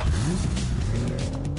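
A car engine revs loudly, its pitch climbing and wavering, with a harsh, hissing edge like tires squealing as it pulls away in one short burst.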